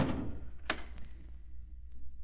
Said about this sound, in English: What was that, sir? Door stuck for a second.